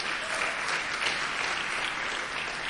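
A crowd applauds steadily for a few seconds for a woman who has accepted Jesus as her Lord and Savior, the clapping dense and even throughout, a bright, hissy wash with no voices standing out.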